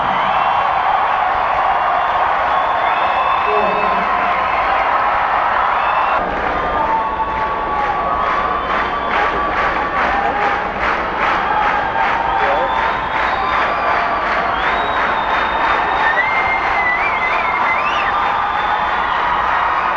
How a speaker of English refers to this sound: So those big build-up claps are incredible as the band is readjusting and getting, because the crowd just keeps going on and on.